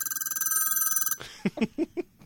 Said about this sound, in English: So this is the Peltzer phone from Gremlins that he recorded. Sick Peltzer phone ring.